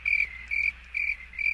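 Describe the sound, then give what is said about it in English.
Crickets chirp in a steady, evenly spaced pulse, four shrill trills in quick succession against an otherwise quiet background, with no voices. “Yeah, there you go. Crickets.”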